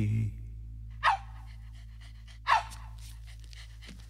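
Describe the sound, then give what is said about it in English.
A dog pants in quick, breathy bursts at the end of a song, with two louder huffs standing out over a low steady hum and no one speaking. “We gotta wait for the dog to wrap it up there.”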